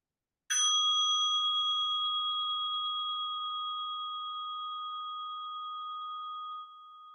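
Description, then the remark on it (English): A single light tap on the edge of a meditation bell held upright, followed by a clear, pure ringing tone that sustains and fades very slowly over several seconds, heard alone. “Just lightly tap the edge of the bell while you're holding it up straight.”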